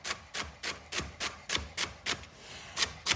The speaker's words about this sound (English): And we want pretty small pieces here. We have two celery stalks. Okay, so you want to just run your knife through it so that it's pretty small.